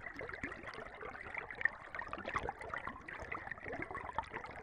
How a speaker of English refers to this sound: When you put your ears under the water, you're listening to pressure waves released by all of these creatures or the movement of the water itself through plants and rocks.